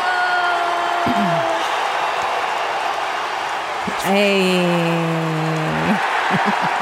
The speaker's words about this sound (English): Hey, and the crowd goes wild.